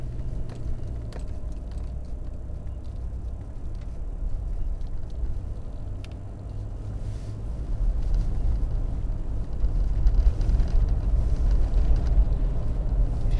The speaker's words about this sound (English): Man, this truck is smoking like crazy. Hope it's not on fire. It's carrying some kind of a chemical. Maybe it's just exhaust.